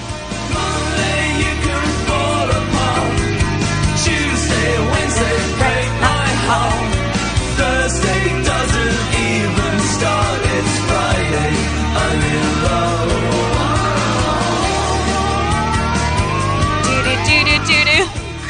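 A full band song plays steadily and loudly throughout in a car, with a sung vocal melody gliding over sustained instruments and a steady low bass, continuous for the whole stretch.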